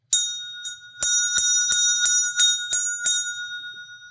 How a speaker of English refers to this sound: This is my bell. I use it in meditation. It is a locator. When my mind starts to wander, the sound brings me back to this moment, the second month of quarantine.